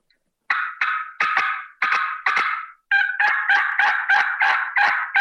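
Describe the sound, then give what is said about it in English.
A turkey call gives a handful of sharp, irregular cutting notes, then breaks into a faster, steady run of loud raspy yelps, an excited yelp sequence with no talking. “Then I'm going to throw a couple cuts and a little more of excited yelp, like so.”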